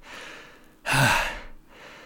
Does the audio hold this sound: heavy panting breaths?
yes